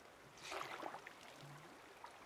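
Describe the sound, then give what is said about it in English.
Soft, steady rush of flowing river water in a movie, with a few splashy surges early on, fairly quiet, with no one speaking. “It's just rivers.”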